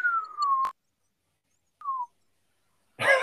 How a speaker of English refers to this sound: What was that? Just me whistling.